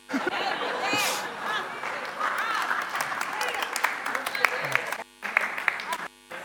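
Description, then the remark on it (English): A crowd applauds steadily for several seconds, dense clapping mixed with cheering and some laughter, dropping out briefly near the end before resuming. “Man, that was the biggest applause I had all morning.”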